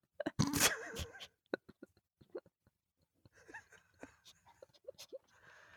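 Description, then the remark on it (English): A puppy in its pen yelps and whines loudly at first, followed by scattered sniffs, snorts and short squeaks, then a stretch of restless panting with high little whimpers. “From the puppy pen.”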